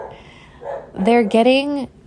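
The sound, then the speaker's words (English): The speaker's dogs bark: two loud, drawn-out, tonal barks in quick succession, preceded by a fainter yelp-like sound, with no one speaking. “there go my dogs.”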